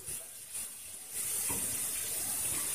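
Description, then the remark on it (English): Boiling water from a kettle is poured into a sink to clean it, with a steady, hissing splash that swells louder about a third of the way through and then holds constant. No one speaks. “Once that happens, you'll take the boiling water in the kettle and have the same idea over here.”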